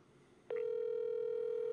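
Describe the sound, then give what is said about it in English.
After a brief quiet moment, a phone line starts ringing on an outgoing call: one loud, steady electronic tone that holds unbroken until the end, with no voices. “And ringing.”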